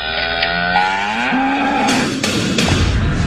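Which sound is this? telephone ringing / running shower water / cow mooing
cow mooing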